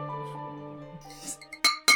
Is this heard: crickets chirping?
no